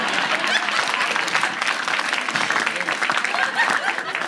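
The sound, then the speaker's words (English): Steady applause from an audience fills the whole stretch, a dense wash of many hands clapping at once, loud, with no pauses or individual claps standing out. “Now, you know, going back to at least he didn't say, please clap.”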